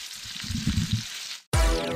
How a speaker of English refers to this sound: Listen to that bacon crackling in that grease, y'all.